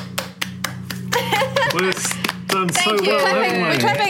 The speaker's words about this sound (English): Thank you. We're clapping ourselves. Well done.